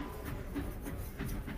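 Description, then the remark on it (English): A steady, low rumble inside a moving train carriage during a train journey of about a day and a half, continuous and fairly quiet with a faint rhythmic pulsing and no voices. “until we're going to jump off this train”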